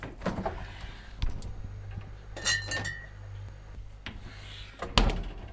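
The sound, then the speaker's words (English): A fridge door opens with a soft thud and bottles clink and rattle against each other in a few bright, glassy taps over a low steady hum. “I'm going to go see what's in the fridge.”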